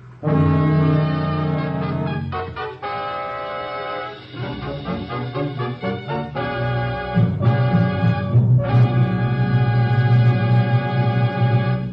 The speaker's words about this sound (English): Chimes mean good times on NBC.